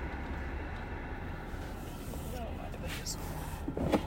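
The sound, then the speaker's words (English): A steady, airy whir of a fan runs continuously inside a car, blended with low engine and road rumble. Faint, indistinct voices surface briefly near the end. “Whose fan is doing that?”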